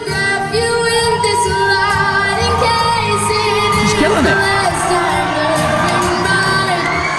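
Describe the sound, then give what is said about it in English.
A large concert crowd at a benefit show cheers and screams loudly and steadily throughout, a dense wall of shouting voices with a few higher-pitched whoops rising above the roar. “This is in front of a concert crowd.”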